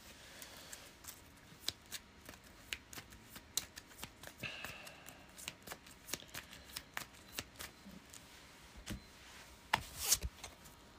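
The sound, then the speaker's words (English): The remaining cards are shuffled back into a deck during a card game, a quick irregular run of crisp riffling snaps and flutters spread across several seconds, with a louder burst near the end and no talking. “Shuffle the rest back.”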